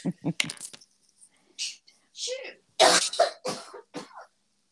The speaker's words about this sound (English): I might need to get some water. I'm just having a coughing fit. Hold on 2 seconds. Hold on.